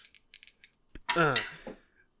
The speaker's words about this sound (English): All right, let's roll these. Here those dice.